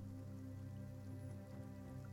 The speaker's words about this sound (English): It's almost kind of relaxing a little bit. Feeling the rain around you. You hear the thunder off in the distance. Those slow kind of cracks of energy.